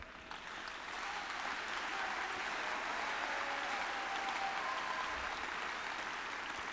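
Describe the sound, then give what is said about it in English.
An audience at a church sermon claps steadily for several seconds, a dense, even patter of many hands that swells quickly at the start and holds at a fairly loud level throughout, with no voices heard. “Even if you don't clap, I will still preach.”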